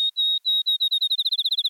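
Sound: field sparrow song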